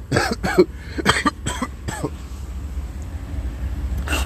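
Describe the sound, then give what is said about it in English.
A harsh coughing fit: five or six rapid bursts in the first two seconds, a quiet pause over a low background rumble, then one final cough near the end. “Excuse me, coughing.”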